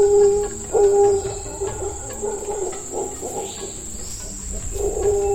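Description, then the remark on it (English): Howler monkey calls from the forest canopy of Central and South America, sounds that travel for miles: deep, droning hoots that rise and swell in repeated bursts, set against a steady high-pitched insect whine and low rumble throughout. “It's often hard to see howler monkeys in the forest canopy, but their sounds, which travel for miles, are unmistakable.”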